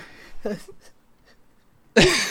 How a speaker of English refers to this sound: I'm sorry. Sorry. Are you okay? Yeah, it sneezes.